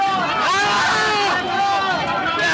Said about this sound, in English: The yelling is a Capitol police officer caught in the crush of the crowd.